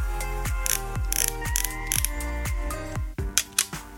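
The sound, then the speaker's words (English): A Holga plastic camera's film advance ratchets in a steady series of clicky winding strokes, then the shutter fires with a couple of sharp, light snaps near the end. No one speaks. “Now, if you're thinking that sounds a little bit plasticky, well, you'd be right. It is, of course, a Holga.”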